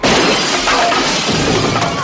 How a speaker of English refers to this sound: And that's when a chair goes through the patio door.